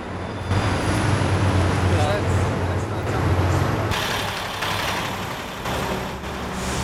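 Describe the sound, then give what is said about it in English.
A CT2 city bus idles, its heavy diesel engine holding a steady low rumble over street noise, with a brief hissing surge partway through as it settles at the stop. “So, just taking a little break to mull over with the route that we're gonna take, and it looks like a CT2 has just arrived.”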